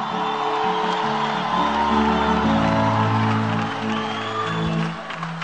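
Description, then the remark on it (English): A large crowd screams and whoops loudly for several seconds, a sustained roar of cheering voices with overlapping shouts rising and falling before easing slightly at the end. “You can scream louder”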